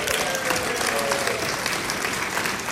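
A crowd applauds steadily, a dense wash of many hands clapping at an even, sustained loudness throughout, with no voices standing out, for children who have just sung a Christmas song.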